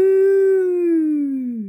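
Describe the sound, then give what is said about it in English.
A child from a dairy farm in Northern Ireland, a couple of miles from Edengrove, gives one long, steady moo imitating a cow, holding a low pitch before sliding gently downward and fading at the end, with no other sounds around it. “Oh, now there is a kid who has been around some cows.”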